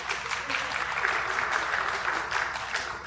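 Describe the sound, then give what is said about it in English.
Steady audience applause for the evening's orchestra, a dense wash of many hands clapping at an even, sustained level for a few seconds with no voices rising above it. “I'm not asking for you to applaud, but how about that orchestra tonight?”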